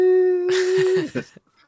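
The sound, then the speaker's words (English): A person holds a flat, steady vocal 'beep' for about a second, imitating a censor bleep, as others break into loud laughter or chatter over its end. “It'll just be a long bleeping noise. Oh, just like a swear bleep.”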